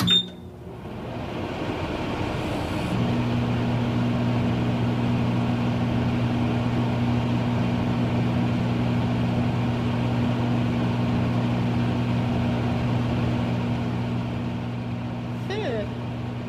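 A microwave oven heating soup starts with a short high beep, then settles into a steady, low droning hum with a buzzy motor tone that continues unbroken to the end.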